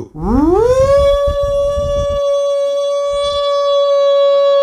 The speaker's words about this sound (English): Was a tornado alarm? It was like a tornado. Or a trumpet? Yes. Okay, that's scary. It was like a tornado, trumpet, train, that kind of sound. At that time? But very loud. Like, woo! Like that.